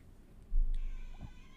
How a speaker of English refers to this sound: hey Basil. I just heard the meowing.